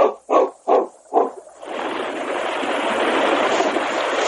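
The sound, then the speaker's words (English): Four short, loud animal-like bursts sound in quick succession, then a swift river current takes over, rushing in a steady, broad wash of water to the end: the current of a 30-mile river travelled down by canoe, with big black boulders rising above the surface. “The following morning, the sergeant and King, Ted and Mary, climbed into their canoe and started down the 30-mile river. The current was swift, and big black boulders rose menacingly above the surface of the water.”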